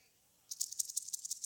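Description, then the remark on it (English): After a brief quiet moment, a poisonous rattlesnake's tail rattle starts up as a warning: a dry, high-pitched, rapidly pulsing buzz that holds steady, with no talking. “when it comes to the poisonous rattlesnake, God put within the snake a warning.”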